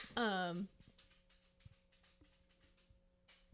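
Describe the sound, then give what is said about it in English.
A dog lets out one loud, drawn-out bark at a rabbit or squirrel it has seen, then everything falls quiet apart from a few faint clicks and a low steady hum. “The dog saw something.”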